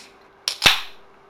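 opening a beer can

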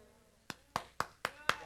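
hand clapping

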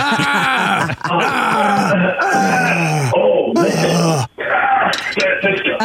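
man screaming in pain

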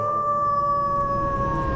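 wolf-like howl

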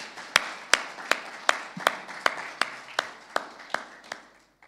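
audience applause

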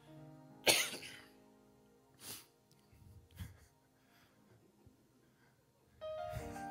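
cough

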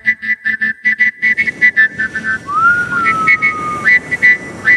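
person whistling

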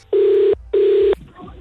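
telephone dialing tones

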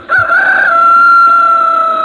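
rooster crowing

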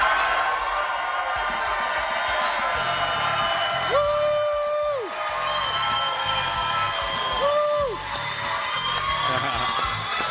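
crowd cheering and whooping

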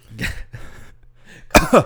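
cough

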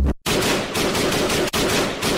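gunfire sound effect

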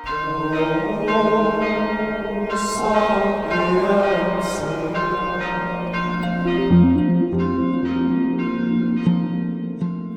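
church bells ringing

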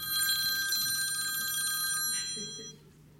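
mobile phone ringing

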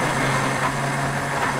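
blender running

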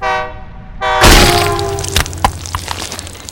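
train passing with horn

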